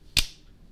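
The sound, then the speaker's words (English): A single sharp hand clap, a bright crisp crack with a short ringing tail, standing alone against a quiet, faintly humming background with no talking. “That was a clap, huh?”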